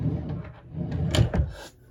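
A wooden nightstand drawer slides open and shut, a couple of scraping, rumbling movements ending in soft knocks, fairly quiet with no one talking.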